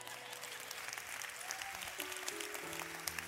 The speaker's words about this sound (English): And I'm kidding about that, but I'm sure glad for the hand clap.